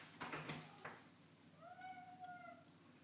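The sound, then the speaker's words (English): A cat meows, starting with a short sharp call and then a longer, drawn-out tonal meow, moderately loud with some background noise and no talking. “Oh, the cat needs to come from the room.”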